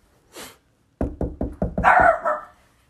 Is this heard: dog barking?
yes